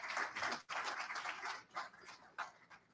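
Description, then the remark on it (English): Audience applause at an event celebrating a musician's 50 years, a dense patter of many hands clapping, heard faintly, thinning into scattered bursts toward the end. “Please, a rousing applause.”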